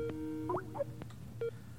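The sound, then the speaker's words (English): Electronic telephone tones of an incoming phone call: a steady beep, a few quick warbling chirps, then a short single beep, moderately loud over a low background hum, with no one speaking. “Oh, now we have another phone call.”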